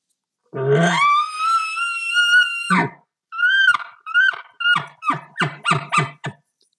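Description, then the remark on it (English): A bull elk bugle imitated on a turkey call: a loud, sustained high-pitched whistle followed by a quick series of short, squeaky chuckling yelps, with no talking. “And then a bull elk, of course.”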